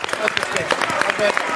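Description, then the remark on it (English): An audience claps in a dense, steady burst of applause, with voices mingling in the crowd noise throughout the short stretch. “Give it up for him.”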